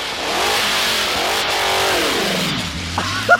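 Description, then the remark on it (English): A dragster's loud, raspy engine revs high at the starting line, then the clutch is dumped and, with its one-speed transmission, its pitch sags and drops sharply as it bogs down, nearly stalling, with a brief sharp clunk near the end. “They rev up the dragster and they dump the clutch.”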